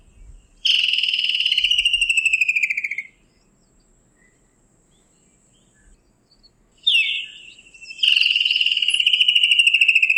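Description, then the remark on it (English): A recording of a Woodland Kingfisher, played from a bird guide, calls twice, each time a sharp high note followed by a long, loud, rapid trill that slides slightly downward, with a quiet gap between the calls and no talking. The call signals summer in the lowveld. “let me just get this, Woodlands Kingfisher. Can I play this?”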